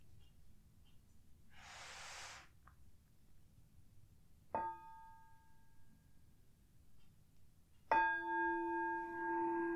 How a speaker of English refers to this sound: I'm going to start with three sounds of the bell and the usual settling in introduction.